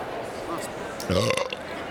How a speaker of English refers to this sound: Gotta stop burping in the mic. It's so fun.